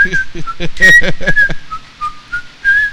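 Someone whistles the Andy Griffith theme song, a bright, wavering tune, the melody stepping between a few sustained notes, while voices chatter briefly underneath at the start.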